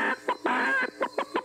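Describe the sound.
A voice imitates a chicken, clucking loudly: a couple of short bursts, one long drawn-out squawk, then a quick run of choppy clucks.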